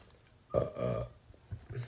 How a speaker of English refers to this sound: A burp on that question.